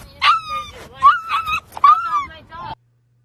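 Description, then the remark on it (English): A puppy, thrown at a man, whimpers and yelps in several high, wavering cries strung together, fairly loud, before cutting off abruptly into silence. “She threw that fucking puppy at that dude.”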